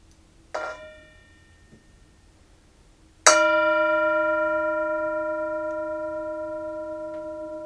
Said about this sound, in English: When you hear the bell, that's an invitation to mindfulness. Enjoy the sound of the bell.